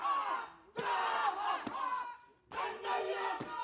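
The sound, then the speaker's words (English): A teenage New Zealander performs an emotional haka, a traditional Maori dance, in the aisle at his mother's college graduation. His voice shouts the rhythmic chant in loud bursts, with sharp rhythmic accents and crowd members joining in, a couple of brief pauses between phrases. “In a now viral video, the young New Zealander steps into the aisle to perform an emotional haka.”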